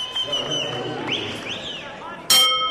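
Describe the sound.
A boxing ring bell clangs sharply near the end, starting a round of a boxing bout in ring two, and rings on over a murmuring crowd and indistinct voices.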